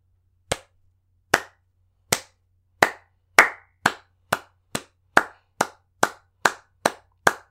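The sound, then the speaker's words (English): A single person claps about a dozen times, slowly at first and then speeding up into a steady, quicker rhythm. The claps are crisp and fairly loud, with no voices. “So I'll just give all you guys a moment to clap away in your cars or your wherever you're listening this to this.”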